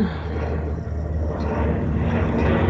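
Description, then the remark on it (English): A propeller airplane drones steadily overhead on the flight path near MSP airport, a loud, continuous engine rumble that swells slightly toward the end, with no voices. “Over them right now. It's not like a jet overhead.”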